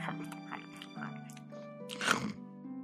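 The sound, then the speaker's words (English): A voice makes wet, snuffling chewing and munching noises in quick irregular bursts, imitating a pig chewing a flower it has chomped off, over a low hum, ending in a louder crunchy snort. “chomps the flower off. And then just looks at Faelith chewing”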